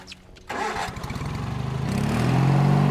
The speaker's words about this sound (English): Dennis is driving something that looks like a riding lawnmower with a paddle wheel in front. They call it a water wheel beater.